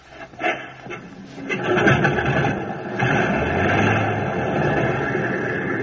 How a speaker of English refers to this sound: Select the number one engine on, sir. Well, here goes.